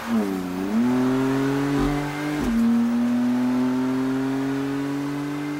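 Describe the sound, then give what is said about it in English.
A car engine revs up loud, its pitch climbing, briefly shifting as if changing gear, then settling into a steady, strong drone. No one speaks. “Vroom, Vroom! Do you know about car engines?”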